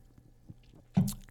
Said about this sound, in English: I'm going to take a sip of my drink here because I know that I'm going to start getting a little teary-eyed.